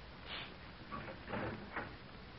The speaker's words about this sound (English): I'm going to open up the door and listen.